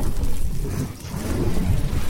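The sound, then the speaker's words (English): Lightning crackles and blasts a mountain rock: a loud thunder blast rolls into a sustained, heavy low rumble lasting a couple of seconds, with a steady hiss like rain underneath and no voices. “Lightning crackles and blasts the rock behind you.”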